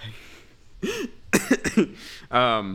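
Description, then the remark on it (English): A dry cough comes in a quick cluster of three or four harsh bursts, then a voiced, throaty sound trails off at the end. “Besides well, I mean, my cough, week's been fine.”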